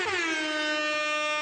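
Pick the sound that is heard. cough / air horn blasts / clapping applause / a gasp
air horn blasts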